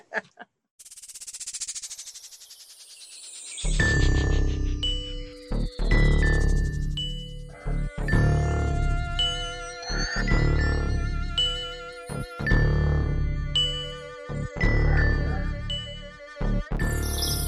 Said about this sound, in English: that was my bear bell you just heard. Yeah. I brought it.